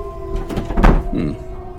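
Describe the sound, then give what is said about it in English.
A heavy bolted door is tried and rattles against its bolt, giving a dull thunk and a short creaking strain, with a faint hum underneath. “Your door seems to be bolted. How strange.”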